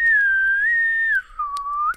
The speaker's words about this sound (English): We never heard him hit the ground over the loud, terrible whistling.